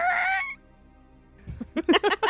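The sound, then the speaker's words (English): A creaky wooden back door opens: a long, loud, high-pitched groan, a pause of near silence, then a quick run of four or five short squealing creaks. “Creaky wooden back door.”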